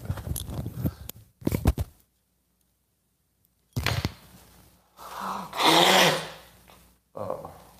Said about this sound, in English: The problem is, if I don't blow my nose, I'm not going to be able to go on much further. So, excuse me.